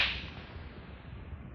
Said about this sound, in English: Hey. You slapped me. I'll do more than slap you.